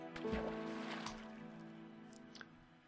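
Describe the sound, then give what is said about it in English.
A boat moving across water in the video game of the Far Lands or Bust series: soft, steady watery sloshing with a few splashy bumps, fairly quiet, under a low sustained tonal hum, with no talking. “Let's hop in a boat, maybe.”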